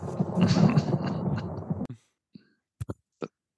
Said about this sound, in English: No, that was actual thunder that was happening behind me.